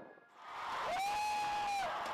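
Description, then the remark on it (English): A crowd of thousands roars and cheers loudly as the mayor lights the big Christmas tree in Sol Square, Madrid, Spain; a sustained wash of many voices with a few high whoops rising above it, swelling over a couple of seconds. “In the capital of Spain, the mayor of Madrid lit up the big tree of Sol Square with thousands of people cheering.”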